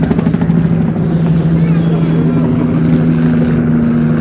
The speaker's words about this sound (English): One helicopter now is in real low. Military police helicopter.